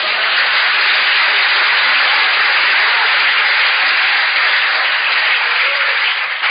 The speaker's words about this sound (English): Are you clapping your hands for Jesus?